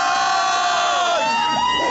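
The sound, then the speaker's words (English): The Redcoat Band marching band's crowd of voices gives a post-game "Go Dawgs" cheer in Lexington, yelling together in one loud, sustained shout, the pitch sliding up and down as the cheer swells and breaks. “That was the Redcoats giving a go Dawgs post game.”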